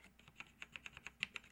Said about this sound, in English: I can feel that. That's a space bar.